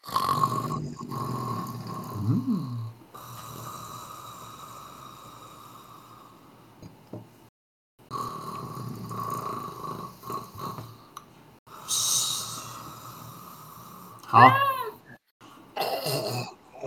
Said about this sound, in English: Huh? I think someone is sleeping down there. Do you hear snoring?